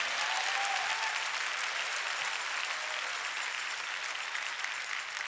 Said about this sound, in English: If you love him, come on, clap your hands and give praise to your Lord.